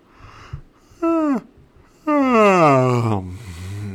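A drawn-out, voiced yawn: a short groaning rise and fall, then a longer sighing yawn that slides down in pitch and trails off, with no talking.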